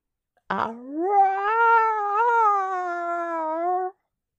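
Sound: cat howling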